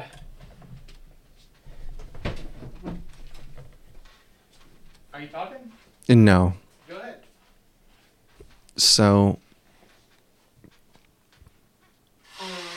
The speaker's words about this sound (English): Even with your mic muted, we could hear you blow your nose.